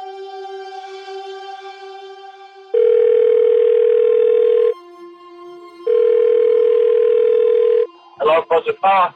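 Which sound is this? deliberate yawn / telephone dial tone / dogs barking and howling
telephone dial tone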